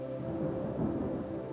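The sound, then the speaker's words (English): Steady rainfall pours down in a continuous, even wash of noise, with a low rumbling drone underneath and no pauses or voices. “Listening to the drone of the rainfall lulled her into a dreamy state of complete relaxation.”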